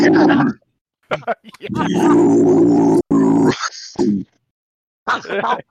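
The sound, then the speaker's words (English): A man lets out several guttural death metal growls to finish out the show Heavy, low and raspy with a harsh, roaring texture, in loud sustained bursts broken by short pauses. “Or can you do us a death metal growl to finish us out?”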